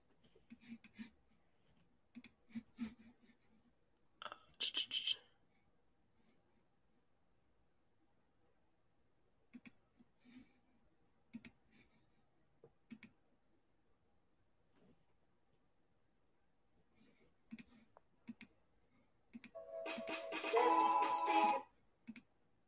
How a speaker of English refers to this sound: We can hear it. We can hear you adjusting your speakers.